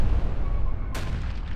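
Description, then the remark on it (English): An explosive with a high-yield pulse, planted on a rock, detonates partway through over a steady low rumble: a sudden loud crack that spreads into a dense, crackling roar. No one speaks. “We planted an explosive with a high-yield pulse on that rock we just left.”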